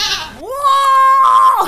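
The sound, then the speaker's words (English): A single loud goat bleat, rising in pitch and holding a wavering, nasal tone for over a second before dropping off at the end. “This story from The Goat Lord. I should have used this sound bite.”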